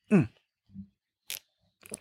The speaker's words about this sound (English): And with that, I'm going to pause and have a little sip of this. Brewed it this morning.